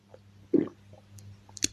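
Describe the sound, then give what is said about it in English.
Someone takes a quick sip of tea, a soft wet slurp and swallow followed by a faint click, with no talking. “Let me just sip my tea.”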